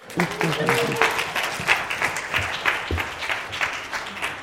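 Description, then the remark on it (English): An audience applauds as a speaker is welcomed, with steady, dense clapping that holds at a fairly loud level throughout, while a few voices murmur and call out underneath. “You're clapping even though you think that I might be a Leaf fan.”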